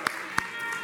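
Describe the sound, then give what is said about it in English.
Audience clapping for news of a new Teenage Mutant Ninja Turtles movie: a steady wash of hand claps, with two sharper, louder claps standing out early on. No voices are heard over it. “So can we just, hand clap for that right there, right?”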